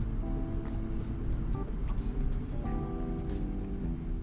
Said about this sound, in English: The perks about doing podcasts and driving, other than you guys hearing the road noise, which I'm dealing with other people.